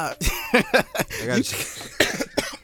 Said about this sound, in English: Hey, easy with the coughing, buddy. My bad. I'm fine. I was coughing because I was laughing.